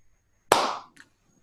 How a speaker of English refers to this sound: The Skull Reaver, still pointing at Damien, slowly lowers his hand, and he begins to clap slowly.